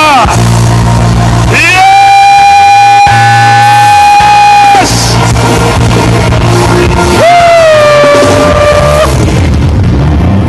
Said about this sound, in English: Can we give the Lord 3 shouts of hallelujah? Can we give the Lord 3 shouts of hallelujah? Can we give another shout of hallelujah? 1 more shout of hallelujah. 2 more shouts of hallelujah. Hallelujah.